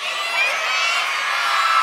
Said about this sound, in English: Any of you kids excited about Christmas? Oh, come on, you can do better than that. If you're excited about Christmas and you're a kid, yell, it's Christmas, as loud as you can.